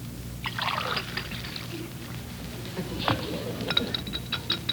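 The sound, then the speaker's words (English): Peavy pours a glass of water for Mr. Gildersleeve, a short, splashing stream over a low background hum, followed by a few light, ringing clinks of glass. “Peavy, could I have a glass of water?”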